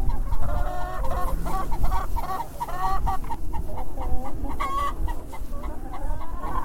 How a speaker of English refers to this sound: That cackle there means that one laid an egg.